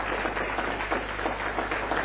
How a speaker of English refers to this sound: Sir, put your hands together for the Lord as he goes. This way, sir. This way. Keep clapping as he goes. Keep clapping as he goes.